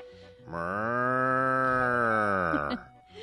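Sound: cow mooing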